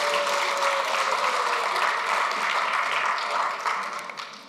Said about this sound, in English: But everybody, round of applause for the intern.